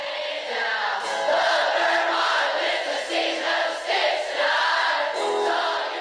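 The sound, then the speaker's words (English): A huge concert crowd screams the chorus line "I love Vermont" in unison, a loud, sustained roar of voices with rising and falling shouted phrases over about six seconds. “And he has clips from different concerts and different events that he did where just the sea of people screaming that line from the chorus, like, I love Vermont.”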